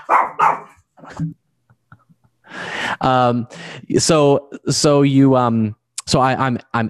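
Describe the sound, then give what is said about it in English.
A dog named Watson barks repeatedly and loudly: a few short, sharp barks at first, then after a brief pause a run of longer, drawn-out, howling barks. “Because he barks and, you know, he's makes he's barking his right now.”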